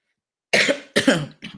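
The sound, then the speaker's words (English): Three sharp coughs in quick succession, fairly loud, the last one shorter and softer than the first two, with silence before them. “my apologies for the coughing this morning.”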